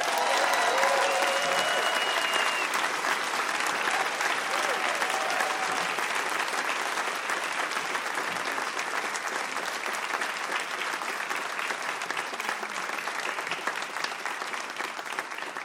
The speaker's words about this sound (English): I'm going to ask you to give a warm round of applause and welcome to the hosts of the Prosecuting Donald Trump podcast, Andrew Weissmann and Mary McCord.